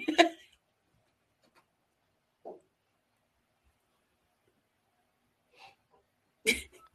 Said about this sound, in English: This part just cracks me up. He's just looking at his notes. He sniffs.